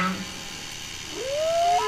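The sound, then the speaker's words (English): A voice imitates a whale call: a short low tone, then a drawn-out, rising, moaning whistle that swells louder toward the end, heard alone. “Yar, whale off the port bow. Wow, that's a big whale.”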